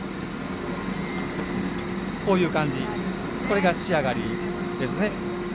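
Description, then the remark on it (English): A steady mechanical hum with a faint high whine runs throughout as a button-drilling machine uses four tiny drill bits to carve buttonholes from the back of the buttons, while a voice speaks in short bursts over the droning motor noise. “This machine in front of us, they're the machines for the buttonholes.”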